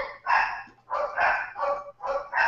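A dog barks repeatedly in quick bursts, about five or six sharp, fairly loud barks in an uneven rhythm, with no talking over them.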